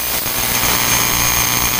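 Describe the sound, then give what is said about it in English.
A lawnmower engine drones loudly and steadily, a continuous rough buzzing hum with no break and no voices over it. “Well, the Lawnmower Man just visited us.”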